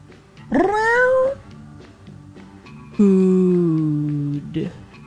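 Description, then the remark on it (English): A person imitates a cat's meow twice: a rising, wavering mew lasting under a second, then a longer, drawn-out meow that slowly falls in pitch, both loud. “Why don't you try your meow and see what it says.”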